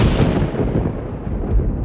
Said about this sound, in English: Oh, I know how far you've all trekked to answer my summons, and the storm still rages outside.